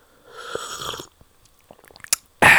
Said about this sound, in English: I'm taking a sip of this coffee.